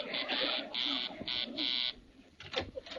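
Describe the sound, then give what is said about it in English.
A harsh electric door buzzer, pressed by Mr. Dabney arriving to deliver a meat order, sounds in four short bursts of uneven length, loud and raspy, followed by a brief shuffle and faint clatter after it stops. “That's Mr. Dabney. I know his buzz.”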